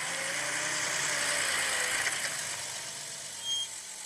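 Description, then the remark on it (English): A car engine idles with a steady rumble and hiss, easing down slightly near the end with a brief bump before settling, as the car stops at the end of a gravel road by a dark, empty house. No one speaks. “The gravel road ends about 20 feet away from the house, and you stop the car looking up at the dark and empty building.”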